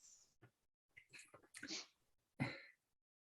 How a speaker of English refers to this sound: You like start to sneeze and you have like the feeling like someone's invoking your name somewhere.